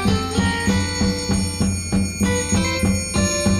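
An instrumental pop tune plays at a steady, moderate volume, with bright chiming, bell-like melody notes over a regular rhythmic pulse and sustained tones. No one sings or speaks.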